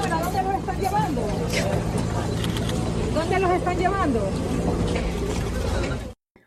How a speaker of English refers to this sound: Here was here's a short clip of the bus leaving the island. I think this is Friday.